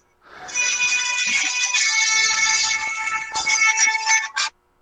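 A phone ringtone plays a bright, Scottish-style melody, loud, running steadily for about four seconds before cutting off abruptly, with no one talking over it.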